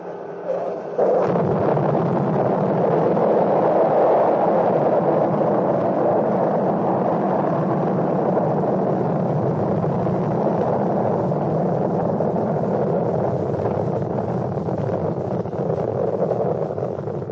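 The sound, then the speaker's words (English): The Atlas engines of an Atlas Agena launch vehicle carrying a lunar orbiter ignite at launch from Cape Kennedy, bursting into a loud, steady roar after a brief quiet start, a dense, rumbling wall of noise that holds at full strength without letting up. No voices are heard. “The Atlas ignites, pushing the spacecraft through the thicker atmosphere.”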